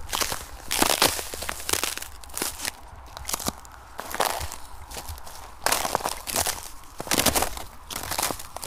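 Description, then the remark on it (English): Steady footsteps crunch over frozen ice while walking through a field after a cold night, each step a sharp, brittle crackle, fairly loud, repeating in an uneven walking rhythm with no voices. “It's been a bit nippy overnight recently, and there's some great crunchy ice sounds around.”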